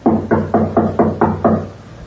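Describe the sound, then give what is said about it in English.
Seven firm knocks on a wooden door in a steady, quick rhythm, fairly loud, with no voices over them. “Knock again.”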